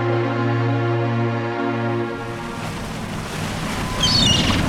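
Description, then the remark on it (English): A steady, droning boat engine hums, then gives way to a broad rushing wash of water and wind on the Aucilla River at Nuttall Rise, with a brief high chirp near the end. No one speaks. “This is the furthest up the river we can bring a boat this size.”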